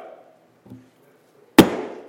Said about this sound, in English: Door is slammed.